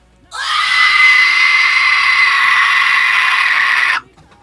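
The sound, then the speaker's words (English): A single loud, piercing vocal whistle tone held steadily for about three and a half seconds, shrill and strained like a scream, then cut off abruptly into near silence. “I'm about to whistle tone and end. You've got until the end of this whistle tone.”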